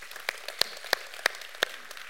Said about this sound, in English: I want you to get behind him and cheer him on. How many will do that? You'll cheer him on.